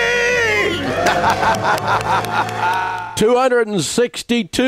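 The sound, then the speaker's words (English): A loud, sustained celebratory scream of being debt-free from several voices, given after a one-two-three countdown, mixed with crowd cheering, lasts about three seconds, then gives way to people talking excitedly. “Let's hear a debt-free scream. Are you ready to scream?”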